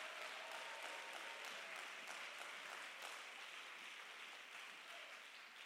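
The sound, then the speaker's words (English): A crowd claps steadily, many hands together in a dense, continuous wash of applause that holds for several seconds before easing slightly at the end, with no voices standing out. “I'm so glad I can clap my hands and feel the ever-present glory of God step into the”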